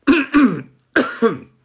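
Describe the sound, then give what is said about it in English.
A man clears his throat in two quick double bursts, a rough, gravelly "ahem-hem" repeated after a short pause. “Excuse me, I have to clear my throat.”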